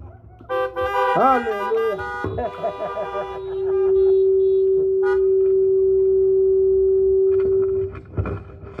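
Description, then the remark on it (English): Several car horns honk together as a honk offering during a Christian church message, a loud, overlapping blare, then one horn holds a long steady toot for several seconds before cutting off amid some background noise. “A honk offering, we said.”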